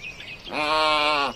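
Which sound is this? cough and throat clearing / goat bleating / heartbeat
goat bleating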